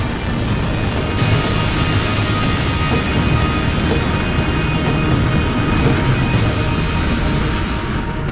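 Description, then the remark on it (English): A Falcon 9 rocket carrying the Jason 3 satellite lifts off in fog: a loud, steady, deep rumble filled with rough crackling that holds without a break for the whole stretch, with no voices over it. “And liftoff of the Falcon 9 rocket with Jason 3.”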